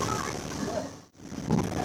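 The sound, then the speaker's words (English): Loud, steady roar of fierce wind buffeting the microphone over the rumble of a boat's engines at sea, with a brief dip into near-silence partway through before the noise surges back. “The audio isn't brilliant because the engines were that loud and the wind was blowing quite fiercely.”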